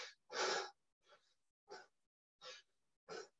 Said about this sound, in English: A little harder for me to work on the whole chest breathing thing. I start getting a little out of breath.